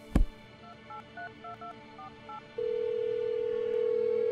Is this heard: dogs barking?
no